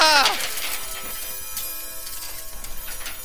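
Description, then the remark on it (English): A chiming wall clock falls off the wall and crashes down: a loud jangling clang with bright ringing tones that drop away quickly, then a few seconds of scattered rattling and clattering pieces. “The clock, it fell off the wall.”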